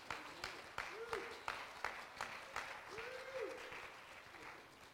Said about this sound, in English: Hallelujah. Let's give the Lord a hand clap of praise right there.